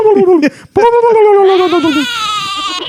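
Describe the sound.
A person imitates a goat's bleat: a short nasal bleat, a brief pause, then a longer, loud, quavering bleat that wavers and trails off.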